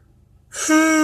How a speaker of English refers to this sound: Excuse me. Rebuke you, Satan. I'm tired of yawning. No more yawning. I'm done. I'll hold my breath before I yawn.